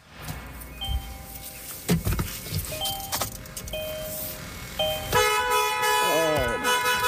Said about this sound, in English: I'm gonna try one last thing. I'm gonna honk the horn and try to scare it out of there.